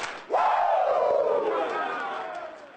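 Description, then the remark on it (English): A crowd, called on for two claps and a Ric Flair, lets out a loud, drawn-out Ric Flair-style "woo!" in unison, the shout bursting in suddenly, sliding in pitch and slowly fading over a couple of seconds. “Now give me two claps and a Ric Flair.”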